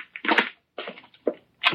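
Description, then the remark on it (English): The lock of a connecting door to an office being worked: a quick series of four rattling, clattering metallic bursts with short gaps between them, moderately loud, with no voices. “Davis, unlock the connecting door to this office.”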